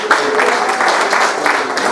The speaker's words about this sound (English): Why don't we give God a huge round of applause?